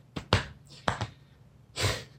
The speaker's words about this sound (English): That's the sign that I'm done talking. Just two slaps on the chest.